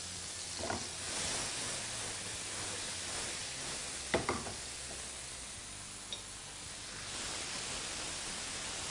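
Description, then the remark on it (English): Tomatoes sizzle and bubble steadily in a hot pan as they cook down into a jam, their water evaporating, a continuous hissing fry with a few brief clicks and pops from stirring around the middle. “So this is going to cook down. Most all of the water is going to dissipate out of these tomatoes, and this is going to be the finished product, okay?”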